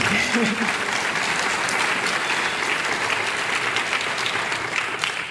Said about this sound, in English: That, I think, is worth applauding.